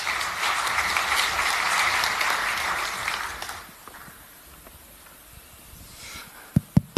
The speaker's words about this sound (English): So give them a round of applause and welcome to stage.